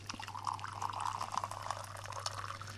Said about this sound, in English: Oh, look, I better pour the tea first